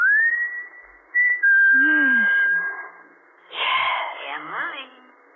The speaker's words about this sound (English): When he used to roll to the bottom of the hill and wait for you, and you could stand in the orchard until you heard him whistle.